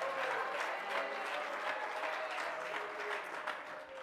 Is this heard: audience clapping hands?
yes